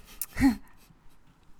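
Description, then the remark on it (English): A short breathy yawn: a quick intake of air, then a voiced, falling moan lasting about a quarter second, followed by faint background murmur. “Yawning on the podcast again.”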